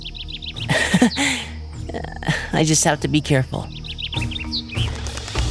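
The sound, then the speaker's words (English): A small bird on a tree branch twitters in quick, high, repeated chirps, first alone at the start and then again at the end, with a person speaking briefly in between and under the later chirps. “A bird twittered on a branch as if in greeting.”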